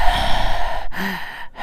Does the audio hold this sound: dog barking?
no